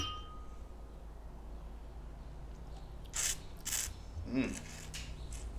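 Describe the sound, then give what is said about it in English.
Two quick glassy clinks about half a second apart, wine glasses touched together in a toast, moderately loud against a soft background. “Let's give it a sip. Cheers.”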